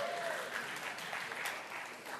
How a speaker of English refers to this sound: Oh, it just started to rain. You hear that? Isn't that cool?